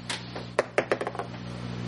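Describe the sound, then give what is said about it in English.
A die clatters across a hard tabletop in a quick burst of five or six sharp clicks that bounce and taper off, over a steady low hum with no talking. “That's a cursed dice.”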